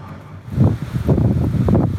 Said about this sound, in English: It's another windy day!